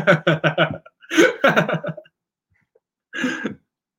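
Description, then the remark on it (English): Sneezing, a quick cluster of sharp, loud bursts, then a second flurry, a brief silence, and one final sneeze on its own. “Bless you.”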